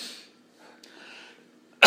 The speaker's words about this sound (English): You can't keep coughing into that.